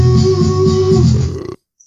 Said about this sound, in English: Oh, that was like the perfect timing for a belch.